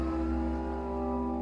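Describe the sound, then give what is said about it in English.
A car engine hums steadily with a low, even drone as the vehicle pulls away, with no voices present. “A fear in her eyes swelled into tears as the car pulled away.”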